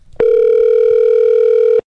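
A telephone ring tone on a call to the owner of the Stardust Ranch: one steady, continuous electronic hum at a mid pitch, holding loud and even for under two seconds before cutting off abruptly. No voices.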